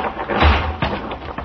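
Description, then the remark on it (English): A dead tree, set to rest on a cut living tree as a trap and triggered by a foot touching a protruding branch, crashes to the ground with one heavy, deep thud, followed by a brief rumbling tail and a smaller knock. “The dead tree, delicately adjusted to rest on the cut living one, crashed heavily to the earth.”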